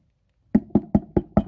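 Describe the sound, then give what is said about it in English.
Five quick, evenly spaced knocks on a hollow cremation urn holding a person's ashes, fairly loud, each with a short resonant thud, after a moment of silence and with no talking. “That's me knocking on her urn.”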